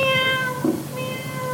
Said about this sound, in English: Oh, yeah, we hear a cat too. Yeah. But where's the sound coming from?" We began to walk around and try to detect where the sound was coming from. "Hey, guys, it sounds to me like the noise is coming from under the street."